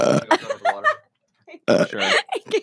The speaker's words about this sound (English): Yeah, I have the best burp here, bro. I can let out. I can burp on command, though.